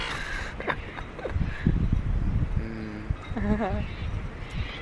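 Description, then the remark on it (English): Seagulls squabble over seaweed, a few harsh, wavering cries rising in a short burst toward the end, over a steady rough rumble of background noise. “Much like our friends the seagulls, you can hear. Having a bit of a battle for seaweed.”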